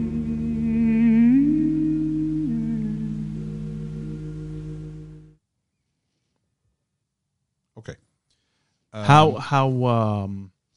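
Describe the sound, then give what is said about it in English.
An old phonograph recording, probably made in the 1950s or early 1960s, plays a wavering sung melody over a constant bed of crackly static for about five seconds, then cuts off; after a pause, a brief voice speaks. “And by the way, if people can pick up on that static, it's just because these are old phonograph recordings, right?”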